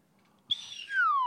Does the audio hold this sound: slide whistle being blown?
yes